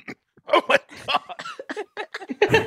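A fairly loud run of strained coughing and choking gasps from a man grasping his throat, roughly eight rough, irregular bursts in quick succession with short breaks between them, no talking.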